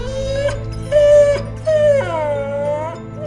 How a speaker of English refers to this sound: Now, soon after Clark became the first guardian of Yosemite, he was hiking in the woods and came to a small lake that's now called Grouse Lake. Standing along the banks, he heard a whimpering cry, almost like a dog.